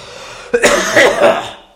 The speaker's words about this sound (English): Yeah, I've been coughing all over this podcast. Sorry about that. Gonna do a big cough now and get it out.